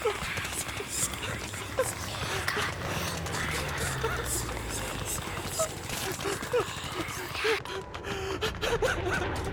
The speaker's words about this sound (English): The prisoner's anguished cries pierce the air as his mind is invaded by Eldritch knowledge. Eerie, otherworldly sounds, like distant whispers and haunting chants, accompany his screams, intensifying the horror.